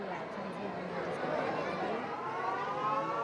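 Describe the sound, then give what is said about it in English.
A wailing siren sounds steadily over the murmur of a large crowd gathered at a Chishti dargah (shrine) during Ramadan, signalling that it is time to break the fast and begin eating; its drawn-out tone rises above the chatter of many people. “The siren tells the people it's time to begin eating.”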